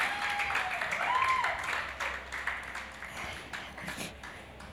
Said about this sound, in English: You can clap for him as he comes on stage.